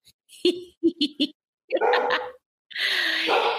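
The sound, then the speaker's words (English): Dogs bark in a quick burst of four short yaps, followed by two longer, rougher, noisier barks after a brief pause, with no talking. “The dogs think I'm on the right track.”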